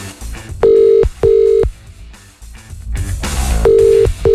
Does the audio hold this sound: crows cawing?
no